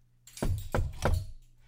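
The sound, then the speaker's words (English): Three firm knocks on a door, evenly spaced in a quick rhythm, each with a dull, resonant thud, with no voices around them; a visitor arriving and knocking at the door. “Oh, that must be him right now. Doctor, get the door!”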